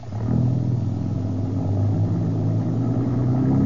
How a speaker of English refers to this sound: The general's staying. The trucks are pulling on out without him.